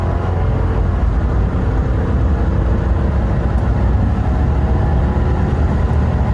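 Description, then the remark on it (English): A new GM 6.6 heavy-duty gas pickup truck, work truck or lower trim with a 6-speed transmission, roars under hard acceleration from zero to fuel cutoff, a loud, steady, deep rumble that fills the whole stretch with no voices. “So this one was a zero to fuel cutoff in the new 6.6 GM heavy-duty gasser.”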